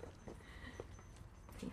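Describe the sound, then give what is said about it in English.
A neighbour's small dog whimpers softly and sporadically, fairly faint against a low background rumble, then lets out a sharper, louder yip right at the end. “He's my neighbour's dog, but I've kind of adopted him, you know.”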